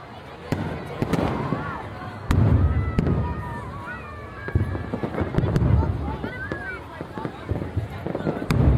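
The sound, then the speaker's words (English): Fireworks burst from all sides in an irregular series of sharp booms and crackles, some loud, others softer, while a crowd murmurs and chatters underneath throughout. “I wonder if we could get on teacups while the fireworks are still going.”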